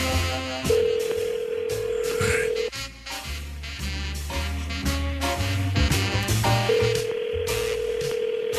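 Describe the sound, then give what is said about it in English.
Two long ringback tones of an outgoing phone call, each about two seconds with a long pause between, ringing unanswered over steady background music. “You know, they, you know, not answering their phone. We'll call another number.”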